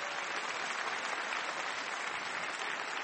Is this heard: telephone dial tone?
no